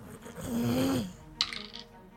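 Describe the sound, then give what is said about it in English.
A die clatters across a tabletop during a tabletop role-playing game in a quick burst of hard clicking rattles that fade within half a second, landing on a natural 20, following a low, drawn-out vocal hum. “That is a natural 20. I'm using a different dice, just so you all know.”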